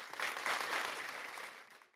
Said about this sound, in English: Need some claps. BET Awards. Yep, yep, yep.